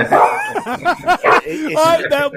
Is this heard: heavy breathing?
no